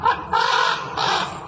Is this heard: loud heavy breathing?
no